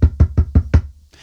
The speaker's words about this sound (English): Like knock on wood.